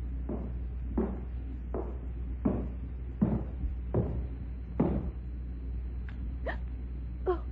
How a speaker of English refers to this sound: Shh, quiet. What is it? Yes. Footsteps.